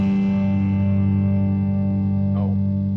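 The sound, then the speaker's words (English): A theme song ends on a loud, sustained distorted electric guitar chord that rings out steadily, with a quick sliding pitch bend just before it fades. No voices. “That song was written by a friend of mine”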